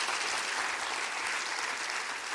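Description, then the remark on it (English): A church audience at Christian Life Austin in South Austin clapping their hands together in steady, dense applause, the sound broad and continuous for a couple of seconds with no voices standing out. “Clap your hands real big.”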